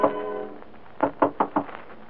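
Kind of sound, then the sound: household object, knocking on a door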